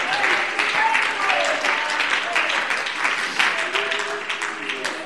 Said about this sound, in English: Oh, clap your hands. Clap your hands. Clap your hands.